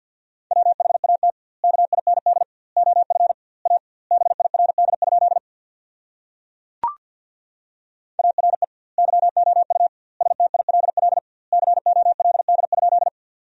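Rapid Morse code beeps sent at 50 words per minute with double word spacing, at a steady mid pitch, dits and dahs racing in tight clusters with short gaps between words, broken once by a brief click before the fast keying resumes.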